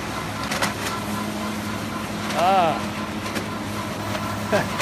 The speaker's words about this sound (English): What you are listening to is the sound of French farmers who have giant dump trucks out in front of government buildings.